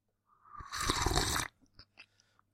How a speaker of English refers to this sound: Or more like a slurp.